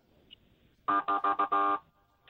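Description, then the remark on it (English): An OPP (Ontario Provincial Police) golf cart, used as a special events vehicle, honks its horn five times in a quick, uneven burst, each blast a loud, buzzy electronic tone, the final honk held slightly longer before it cuts off. “Can you do the little honk thing again?”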